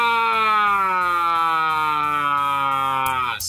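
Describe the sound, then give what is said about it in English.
A loud, steady siren wails continuously, its harmonic-rich tone slowly sliding downward in pitch before cutting off abruptly near the end. No voices are present. “That might be in a siren sound for a show I'm designing.”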